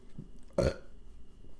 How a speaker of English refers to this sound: And burping is quality audio.